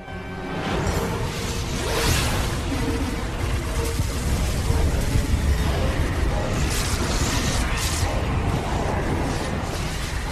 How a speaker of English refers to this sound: Any excuse to show the very expensive special effects again? That's an incredible sequence, that explosion.